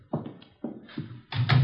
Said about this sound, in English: close the door, will you?